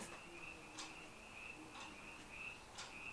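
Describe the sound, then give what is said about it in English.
Frogs or crickets calling outside a window: a steady high-pitched trill runs throughout, punctuated by sharp chirps about once a second, soft, with no voices. “We should have a moment for the crickets or the frogs.”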